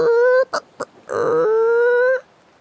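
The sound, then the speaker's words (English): Clay scrapes and slides against clay, producing a loud, tonal, squawk-like squeal: a sustained screech, two short squeaks, then a longer grinding squeal that rises slightly in pitch. No one speaks. “Yeah, this scraping, sliding sound of clay against clay.”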